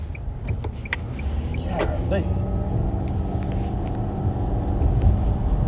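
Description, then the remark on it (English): A steady, loud low rumble of a line of trucks in road traffic, idling or creeping, continues throughout with occasional brief clicks and squeaks, and a voice seems to talk over it. “All these trucks in the line.”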